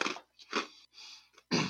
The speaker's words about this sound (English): All right, minus the first part, the end of chewing it and fucking actually tasting it, it tastes like the other two things I tried. The cheddar and the grilled cheese, it has that taste at the end, like it was burnt.